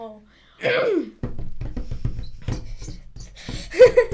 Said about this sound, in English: Her voice was cut off by something rustling in the bushes.